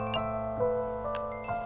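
Bells ring out in a quick sequence of bright, tuned strikes, each note chiming and overlapping as the pitches shift, with long sustained tones hanging beneath the attacks.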